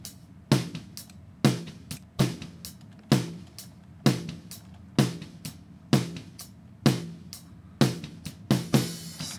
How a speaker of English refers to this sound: Next thing is, I'm obviously not really getting a lot of snare punch. So this is the sound we have now.